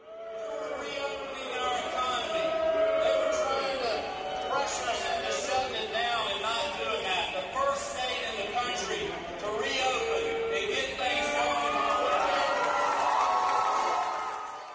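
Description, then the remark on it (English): A large convention crowd at Jekyll Island cheers and boos Brian Kemp as he takes the stage, a dense, continuous roar of many voices that swells and dips for about fifteen seconds without any clear break. “Let's listen just for a minute, Jim, to the crowd responding to Kemp when he took the stage.”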